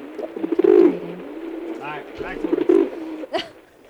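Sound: pigeon cooing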